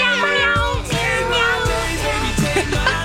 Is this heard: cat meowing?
yes